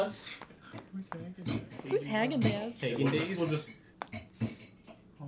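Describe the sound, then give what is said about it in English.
Ice being scraped out of a container: short, uneven scrapes and clinks, repeating irregularly while a voice talks over them in the middle. “I'm scraping the ice out.”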